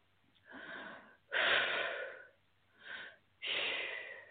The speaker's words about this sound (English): I do a lot of deep breathing to help move the energy, so that's what's happening.